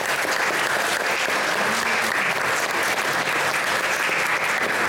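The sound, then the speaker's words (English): A panel show audience applauds itself after giving suggestions, clapping steadily for several seconds, a dense, even wash of many hands with no pauses and no voices on top, loud from start to finish. “Please give yourselves a massive round of applause.”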